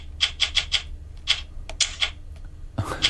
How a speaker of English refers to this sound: But I've also got that... Are you familiar with that app, which is a typewriter thing? Do you know this?